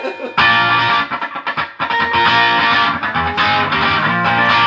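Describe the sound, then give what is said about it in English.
Single-coil hollow-body electric guitar played through a treble boost pedal, loud, with bright, gritty chords ringing out steadily after a short quiet start and a brief dip midway. “Give it a little single coil action. There's a single coil hollow body tones.”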